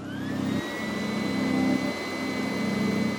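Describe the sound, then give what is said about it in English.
A vacuum cleaner runs steadily while a house is being cleaned, with a droning low hum and a thin high-pitched whine on top, its motor pitch dipping and rising slightly as it works. No one speaks. “I'm vacuuming and she's done with most of the bathroom,”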